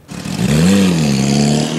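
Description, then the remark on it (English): A Porsche sports car engine revs hard and accelerates as a line of luxury cars leaves for a six-hour backroads drive on day two of a Porsche charity rally. Its growl climbs in pitch and then holds at a loud, steady roar for a couple of seconds, with no voices. “A line of luxury cars leaves for a six-hour backroads drive on day two of the Porsche rally.”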